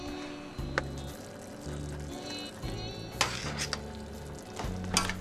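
Mushrooms simmer and sizzle in a covered pot while a spoon stirs them, giving a steady bubbling hiss broken by several sharp scraping clinks and knocks against the pot.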